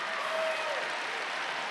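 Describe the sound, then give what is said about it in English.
A church audience claps their hands in praise during a sermon, a dense, steady wash of applause, many overlapping claps blending into a continuous roar that holds at an even loudness throughout. “Clap your hands and praise Him if you know I'm preaching the truth today.”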